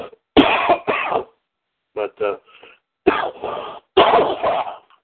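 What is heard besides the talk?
coughing fit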